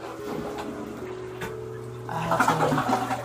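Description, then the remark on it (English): A steady low hum runs throughout. Partway through, a louder rushing, gurgling wash of water comes in, like a toilet flushing, and keeps going to the end. “I just heard the toilet flush”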